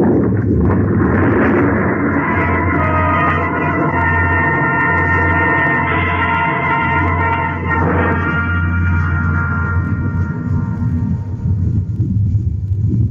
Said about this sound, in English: It must have been the shots that loosened the snow and ice on the ridge above. I heard the sound, and I ran!